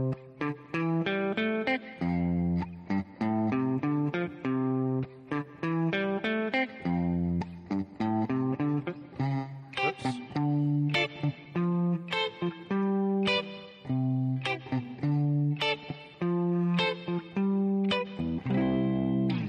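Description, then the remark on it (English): A clean electric guitar, a PRS McCarty 594 with Seymour Duncan 59 pickups, plays a bright, melodic riff of plucked single notes, repeating in a steady, lilting pattern. It is clear, with no voices. “Nice clean sound.”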